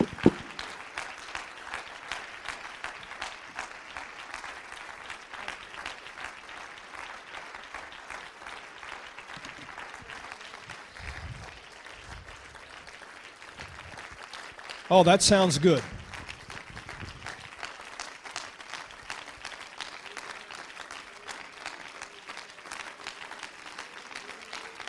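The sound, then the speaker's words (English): A church audience breaks into a long, thunderous round of applause given to the Lord before being seated: dense, steady clapping throughout, with a brief louder surge partway through and a voice speaking briefly over it. “Now, before you're seated, would you just simply lay your Bible down and give the Lord about a 30-second thunderous round of applause.”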